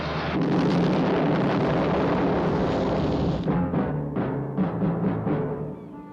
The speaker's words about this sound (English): I jumped overboard just before the boat exploded.